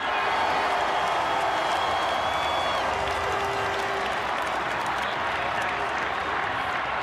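A huge outdoor parade crowd of 300,000-400,000 people roars steadily, cheering and applauding in a dense, continuous wash of noise that stays loud throughout, with scattered whistles cutting through, as Marcus Semien addresses them.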